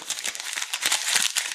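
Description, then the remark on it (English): Paper being crumpled, a steady stream of dense, crisp crackles and rustles with irregular sharper snaps, continuing throughout with no voices. “Oh, the crumpling paper.”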